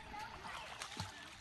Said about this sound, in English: The sound of kids splashing in a pool would remind most of the summers